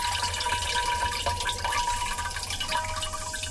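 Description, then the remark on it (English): A steady stream of urine pours into a ceramic chamber pot, one collected from car boot sales and antique stores for a piece titled 100 Urinations, splashing continuously with a few faint ringing tones from the vessel, no voices. “For this piece, like, I've been collecting chamber pots at car boot sales and antique stores and that kind of thing, you know, because they are ceramic chamber pots that I'm using in it.”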